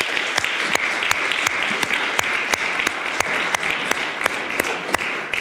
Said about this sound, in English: And actually, could we just have a round of applause for everybody who serves on all the teams across the ministries?